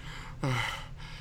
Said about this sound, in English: There's the intro. Let me unmute this part. It's just me breathing.